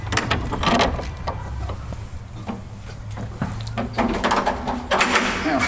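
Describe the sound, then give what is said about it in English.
An old door creaks and clunks open as people go inside, with a few scraping, rattling mechanical knocks and shuffling over a low background rumble. “So we just come inside the door, we're into a big old room on the right hand side.”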